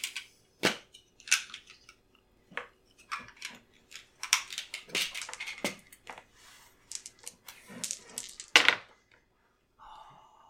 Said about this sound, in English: And so roll 3d6 and see if you injure him.